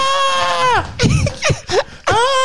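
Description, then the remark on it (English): A person screams in loud, high-pitched wails: a long sustained cry that bends downward in pitch, a few shorter strained yelps, then another piercing wail starting up again. “Sounds like a scream for help, John.”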